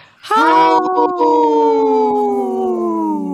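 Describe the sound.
A person imitates a wolf's howl: one long, loud, sustained wail that rises quickly, then slowly sinks in pitch, with no talking around it.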